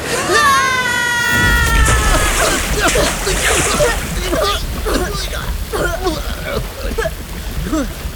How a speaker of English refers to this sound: The water elemental sinks away, and now the rage of the waterfall is gone, and it's just a calm, trickling stream.